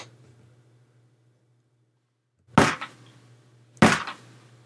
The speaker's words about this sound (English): I ask a question, and if the answer's yes, you knock on the door twice. And if the answer's no, you knock once.